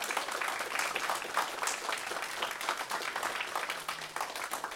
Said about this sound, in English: I think we can definitely clap for them too.